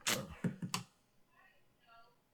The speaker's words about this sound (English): How is that possible? How is that possible with this dice? How is it possible that with this dice, every time I've rolled this dice, I will roll 8 and 9 when you give me advantage and disadvantage? 8 and 9.